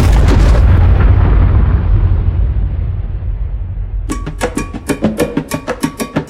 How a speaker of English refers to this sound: From just 10 miles away, the American public were given the opportunity to witness, from the safety of their living rooms, the raw power of a nuclear explosion.